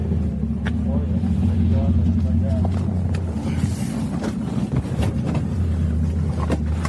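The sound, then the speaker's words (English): The engine of an old, restored Chevrolet Chevelle idles with a deep, steady, throbbing rumble that holds for several seconds. Muffled voices and a few light knocks sound over the drone, at a drag racing track in Malta, Montana. “And this is an old car that me and my dad restored.”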